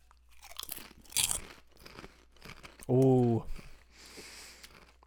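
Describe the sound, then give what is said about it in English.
Lay's barbecue potato chips crunching between teeth in a series of crisp, irregular bites and chews, with a brief loud vocal exclamation partway through and soft murmuring around it. “Okay, chip cheer.”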